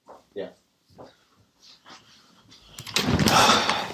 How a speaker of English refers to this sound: I'm just going to close the door. No worries. Oh, actually, I think she's going upstairs now. I might just close the door anyway.